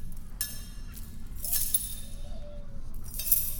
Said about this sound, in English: Get these cuffs off of me. Stop banging them together.